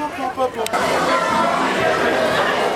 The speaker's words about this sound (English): Okay, we're out of the background booth areas and only have ambient crowd noises. So we'll talk to you again when we get closer to the front of the Splash Mountain line.